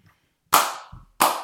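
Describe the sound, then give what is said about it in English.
Two sharp, loud hand claps, about two-thirds of a second apart, each with a short ringing tail that fades quickly. No voices, and otherwise quiet between them. “Round of applause.”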